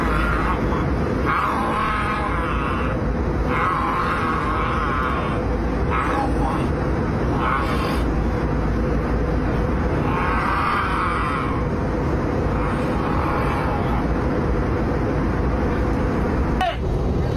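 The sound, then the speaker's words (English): A drunk man growls and groans in rough, drawn-out bursts again and again, fairly loud over a constant low rumble of aircraft cabin noise on a plane still in the air. “He starts growling.”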